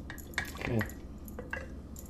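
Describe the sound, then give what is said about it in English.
Vodka is poured into a shot glass, three full shots of about 1.5 ounces each for two drinks, with a brief gurgling trickle and a few light glassy clinks, set against a low background hum. “And we're gonna do 3 full to the top shots of vodka, which technically that's about 1.5 ounces each, but this is for 2 drinks.”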